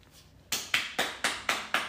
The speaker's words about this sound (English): Did you just give yourself a round of applause? That was the audience. Oh, right. That was the audience.